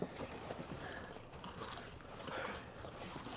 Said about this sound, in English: Okay, I'm going to crunch this cinnamon twist.